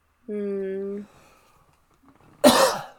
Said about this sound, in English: Ew. Bless. Ew, that cough was gross.